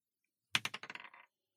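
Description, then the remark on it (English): Dice clatter onto a hard surface, about eight quick bouncing clicks that speed up and fade as they settle. Fairly loud, with no voices, lasting under a second. “Yeah, just roll the roll dice.”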